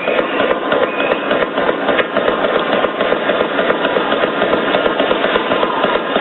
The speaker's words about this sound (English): Let me just play for you what the gunfire sounded like, the first volley of it, and then explain to you what the witnesses are telling us why they didn't think it was.